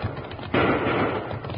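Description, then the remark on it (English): A sharp, loud gunshot fired from behind riders in Rawhide Canyon bursts in about a third of the way through, followed by a long, rough rumbling tail that slowly fades. Softer low thumping comes before it. “Those shots are coming from behind us.”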